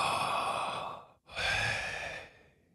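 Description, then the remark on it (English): Slow, airy open-mouth breathing as a person breathes the name of God without using lips or teeth, with only a slight movement of the tongue: one long breath, a brief pause, then a second long breath out that gradually trails off. No one speaks. “I'm just going to breathe. You ready? I literally just had my mouth open.”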